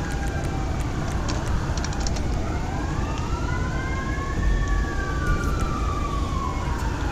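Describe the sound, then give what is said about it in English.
Fire truck and ambulance sirens wail together as the fire department and ambulance respond, their overlapping tones sweeping slowly up and down over a constant rumble of engines and road noise, staying loud throughout, with no one talking. “Man, the fire department is quick. Good God. And so is the ambulance when they spawn on Del Perro.”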